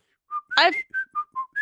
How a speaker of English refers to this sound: You're whistling Dixie.